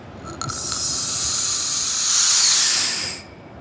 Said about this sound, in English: Ralph whips out something that looks like a glass balloon. All the air has already been sucked out of it, so it creates a vacuum inside. And when Ralph carefully opens the vessel, air gets sucked in.